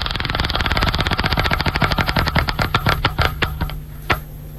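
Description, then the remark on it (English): A prize wheel is given one more spin. It makes a rapid train of sharp clicks that gradually slow and spread apart as it winds down, ending with a few last isolated ticks, and it lands on a car payment. “One more spin.”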